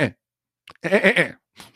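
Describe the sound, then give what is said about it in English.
A person imitates a sheep's bleat up close: a brief clipped cry, then a loud, wavering baa lasting about half a second, with a faint breathy sound trailing after. “Bunch of sheep going up the mountain together on the … train.”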